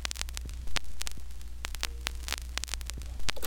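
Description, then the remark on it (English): Vinyl record surface noise: scattered sharp crackles and pops over a steady low hum, with a couple of louder scratchy bursts. No one speaks. “No more records with their scratching and skipping.”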